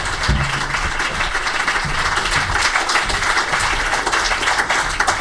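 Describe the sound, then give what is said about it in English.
A sustained round of applause from an audience for three guests at a meeting, dense overlapping claps forming a steady, loud wash of noise that holds evenly for several seconds with no talking. “But if you could have a big round of applause for our three guests, that has been absolutely fabulous.”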